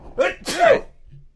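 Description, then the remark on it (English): A single loud sneeze with a short breathy intake followed by a sharp explosive burst, then a brief faint sound as it fades out. “Bless you. Wow, that came out of nowhere.”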